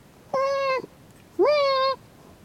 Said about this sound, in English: It's like she's saying, listen to me, here I am. Me, me, me, me, me. It's all about me, me, me. Do you know what she's saying when she meows? Yes, I'm dying to leave Indiana. Please take me quickly.